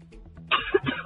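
A short burst of coughing from someone who is sick, two or three rough, throaty hacks in quick succession after a quiet moment, with a low background hum underneath.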